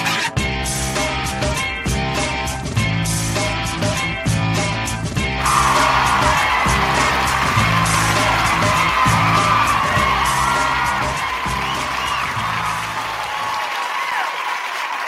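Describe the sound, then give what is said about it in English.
Upbeat music plays alone at the opening of the show Mormonism Live, then a loud crowd bursts into sustained applause with whoops and cheers, the clapping washing over the music until both fade out near the end. “Folks, hold the applause.”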